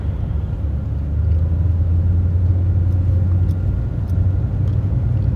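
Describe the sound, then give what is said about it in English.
A steady, loud low rumble of a car driving on the road past a police car with lights and a car in a ditch, the engine drone and tire noise holding constant throughout with no voices or breaks. “give me a sec while I pass this cop and these lights and this car in a ditch.”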